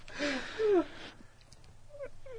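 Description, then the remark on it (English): A voice imitates the call of a large bird of the woodpecker family with a whiny, cat-like meow, a breathy rising and falling wail, followed by a few faint, short squeaky chirps. “The yellow-bellied sap giraffe taint, a fucking huge member of the woodpecker family, it's call can be easily reproduced by squeezing your mouse dick as tightly as possible and meowing like a hungry severed baby fetus.”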